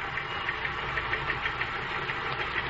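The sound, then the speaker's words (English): A teleprinter chatters steadily as it prints an incoming message, a dense mechanical clatter with quick, regular ticks over a constant motor hum, heard alone without voices. “That message you want is coming in on this machine over here.”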